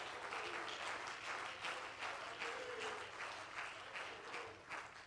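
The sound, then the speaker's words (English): An audience at a church service claps hands steadily, a dense, continuous wash of applause with faint pulsing swells, fairly loud throughout, with no clear voices over it. “Oh, let's clap our hands because he's a hearing us.”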